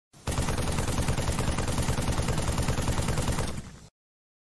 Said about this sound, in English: I'm going to guess Gunfire and Halo